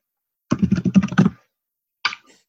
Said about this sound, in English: I can hear can you hear the typing? Yeah, it sounds like you're mashing. Hammering something. I don't know. My microphone just picks up this.